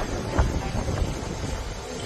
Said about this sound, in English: heavy rain, I mean, and tremendous wind. So yeah, it was a mess. So I just went upstairs to see how things were going. And this is what it looks like just within 15 minutes ago. All right, this is on deck 15. This is the main pool.